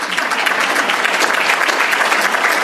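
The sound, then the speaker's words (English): An audience breaks into steady applause, many hands clapping in a dense, continuous patter that stays fairly loud and even throughout, with no voices standing out. “You can clap.”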